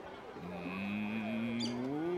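A single long, low cow moo drawn out for nearly two seconds, its pitch rising slightly toward the end, loud against a faint background hum.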